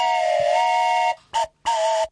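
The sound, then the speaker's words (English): A special lockdown game show buzzer being tested before a round: one long, steady, reedy tone followed by two quick short blasts at the same pitch, loud and clear with no talking. “let's test our special lockdown buzzers.”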